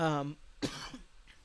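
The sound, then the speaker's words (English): A short voiced throat-clearing hum, then a single sharp cough with a brief breathy tail. No words are spoken. “I got some coughs going, man.”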